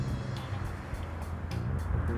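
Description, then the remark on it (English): A loud car rumbles past, its deep, throaty engine roar steady and heavy throughout, with a broad rushing noise over the low growl. “We have a car going by so loud that it sounds like a muffler's den”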